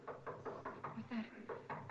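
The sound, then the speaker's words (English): Loud, rapid knocking on a door in a movie, a quick series of heavy raps that pauses briefly mid-way before resuming, with a voice faintly mixed in underneath. “Man, the knocking in this fucking movie.”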